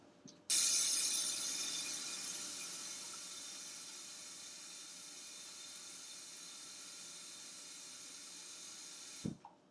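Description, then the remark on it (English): Water pours steadily from a tap into a metal pot that will be set to boil, a sudden bright rushing onset that gradually settles into a continuous hiss and splash, ending with a soft clunk. “Now we just gotta dry it off. Put some water in it.”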